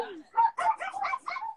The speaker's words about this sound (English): Hold on. Oh, no. No, you didn't. Poor dog.